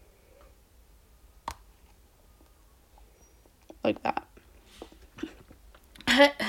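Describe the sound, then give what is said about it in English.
Crisp crunches from a pink-and-white hard candy being bitten and chewed, a single snap followed by clusters of sharp cracking bursts, with a brief spoken phrase partway through. “You can either like lick it or like bite it and then it dissolves in your mouth.”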